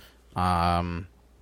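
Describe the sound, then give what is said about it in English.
A single loud, drawn-out burp with a low, rumbling voiced tone, lasting under a second, followed by a brief noise at the very end. “Sounded like you farted out of your ass. I farted out of my mouth.”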